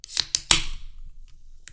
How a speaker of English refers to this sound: So you hear that fizz? Oh boy. All that carbonation. Don't put it too close to the mic.